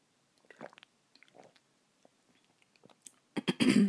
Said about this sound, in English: And I'm just going to sip some water. My throat is cracking for some reason.